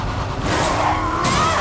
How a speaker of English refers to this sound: Men hurl bricks and cinder blocks as Joel and Ellie weave around them in a pickup truck.